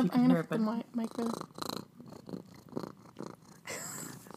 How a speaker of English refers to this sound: I don't know if you can hear that, but we have I actually just adopted a stray cat named Monty, and she is currently purring up a storm.